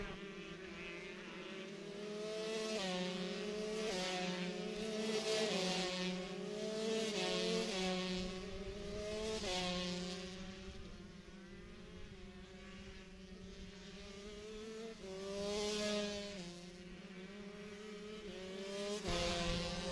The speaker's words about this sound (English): We got more racing on track here. Stick with us, and we'll bring you some lap times.